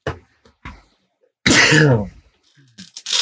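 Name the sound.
sneeze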